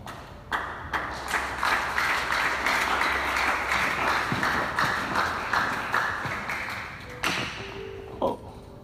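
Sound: audience clapping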